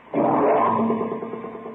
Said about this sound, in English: Say, here's something funny. Motor seems to have a knock.